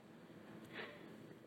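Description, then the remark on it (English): A single short, quiet sniff through the nose midway through, a soft breathy intake against a faint background hush, with no one talking. “I'm sorry about the sniffles.”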